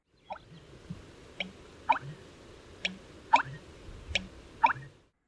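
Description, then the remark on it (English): An American bittern's pumping call: a string of about seven hollow, liquid gulps and plops in an uneven rhythm, each with a deep thump and a sharp dripping click, with no talking. “But all these nicknames actually refer to its very unique and liquid call.”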